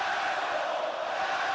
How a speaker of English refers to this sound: Man, y'all remember that, right? Y'all remember how bad Roman got booed? I remember it very well. Okay? Y'all should remember that because it happened in Orlando at a Raw after Mania. It was insane how they booed that man.